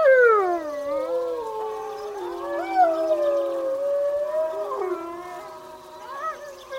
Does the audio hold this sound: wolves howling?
yes